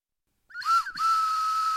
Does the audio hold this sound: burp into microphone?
no